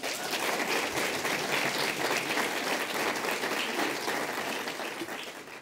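A crowd applauds steadily in welcome of Maurice Kanbar, a dense wash of many hands clapping at an even, sustained volume that tapers slightly toward the end.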